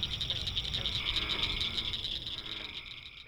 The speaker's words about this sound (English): Two great places to hear the mating calls of the frogs and toads are the Wetland Loop at Glenwood Gardens and the Shaker Trace Outer Loop at Miami Whitewater Forest.